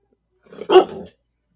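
A single loud dog bark, preceded by a short low rumble and ending after a brief throaty tail, with silence around it.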